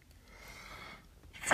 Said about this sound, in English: Bless you. Thank you.